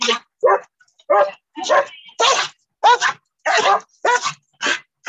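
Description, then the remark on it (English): A dog that was just attacked by another dog barks repeatedly and loudly, about ten sharp barks in quick, uneven succession with brief pauses between them. “Dog is now in car. Dog got attacked.”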